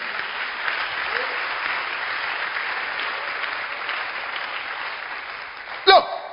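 An audience claps hands for Jesus in a steady, dense wash of applause lasting several seconds, loud, with a brief louder burst near the end.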